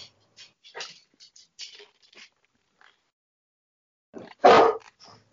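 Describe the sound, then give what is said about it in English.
A very large female dog gives a string of soft, short yips and whines, then one loud bark near the end, with no one talking. “To be fair, when she got this dog when she was a baby, she had to weigh a good 20 pounds already.”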